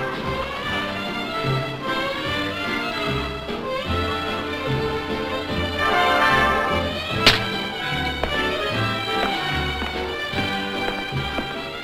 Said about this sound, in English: Yep, that was a quick slap from Nick to Tony, and Nick, as we are quickly learning, isn't going to be made a sucker out of.